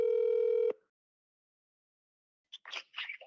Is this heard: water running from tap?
no